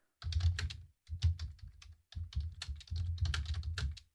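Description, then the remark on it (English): Rapid typing on a computer keyboard, keys clattering in quick bursts separated by brief pauses, moderately loud, with no voices. “And I just apologize for the typing.”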